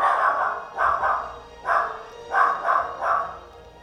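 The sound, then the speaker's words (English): A dog barks about six times in an uneven series, each bark a short, fairly loud burst, with no talking over it. “Dinosaurs don't bark.”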